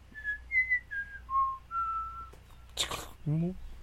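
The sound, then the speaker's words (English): Someone whistles the clear five-note melody from the film Close Encounters of the Third Kind, each note held briefly in a steady rising-and-falling tune, followed by a short burst of noise and a brief voice. “So, growing up, my dad always had cockatiels, and we never taught any of them to talk, but we did teach all of them to sing the Close Encounter song. How's it go, babe?”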